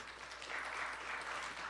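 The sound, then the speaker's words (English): An audience claps together in a steady, dense patter of many hands, fairly soft and sustained for the whole moment without any talking over it. “And now I asked last week, and I'll ask again, how many of you actually come together with friends or family around a dinner table every night? Will you clap?”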